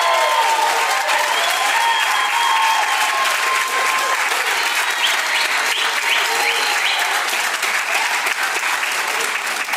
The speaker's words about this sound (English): Will you guys erupt with applause for them? Yes!